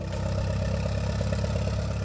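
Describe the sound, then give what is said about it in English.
A 1926 Farmall Regular tractor engine in Western Pennsylvania runs steadily at idle, a low, loud chugging with rapid rhythmic firing pulses and a bit of mechanical clatter, continuous with no talking. “That's a 1926 Farmall Regular.”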